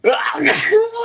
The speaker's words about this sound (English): You can tell a lot about a person by their sneeze.